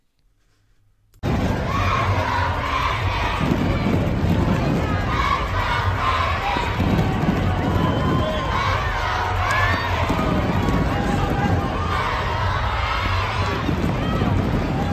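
A large crowd of children at a K-12 wrestling tournament championship chants in a steady, rhythmic call-and-response, loud and continuous, with cheering and shouting rising between the chant phrases.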